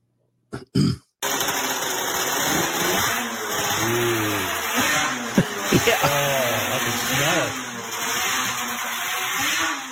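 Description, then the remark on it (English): The two-stroke race engine of a snowmobile that won a championship derby sputters briefly, then roars loud, its buzzing pitch climbing and dropping through several sharp revs, with no one talking. “Listen to this two-stroke snowmobile race engine.”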